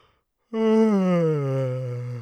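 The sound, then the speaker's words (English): After a short silence, a single long, voiced yawn starts abruptly, loud, its pitch sliding slowly downward for nearly two seconds before tapering off. “it's not a Thoughty Thoughts podcast if I don't yawn multiple times throughout it, so we're off to a great start”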